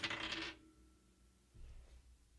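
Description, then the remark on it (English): A die clatters and rattles briefly across a hard desk surface, a quick bright burst of tumbling clicks, followed by quiet and a soft low thud. “but I know one cubicle object that does, and it's in my hand, and we all find out its opinion in three, in two, in one.”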